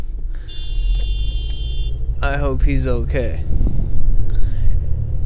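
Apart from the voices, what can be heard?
car horn honking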